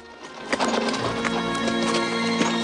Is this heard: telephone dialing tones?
no